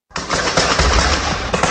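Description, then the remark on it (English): A sustained burst of rapid gunfire as armed suspects and police exchange fire during a bank robbery, many shots overlapping in a dense, loud crackle that starts abruptly and continues without pause, with no voices. “Then this gunfire erupted as the suspects and police shot at police and police returned fire.”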